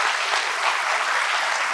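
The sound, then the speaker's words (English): An audience applauds steadily, a dense, even wash of many hands clapping at once with no pauses and no voices rising above it. “It's one thing to clap.”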